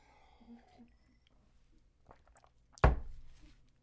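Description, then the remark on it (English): Someone takes a sip of cranberry raspberry juice: soft sipping and swallowing noises, followed by one sudden loud thunk that fades quickly, with no talking. “I need to take a sip of my calm down juice. It's just a cranberry raspberry.”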